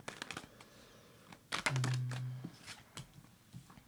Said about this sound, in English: I'll put these cards out. I'm going to shuffle them good.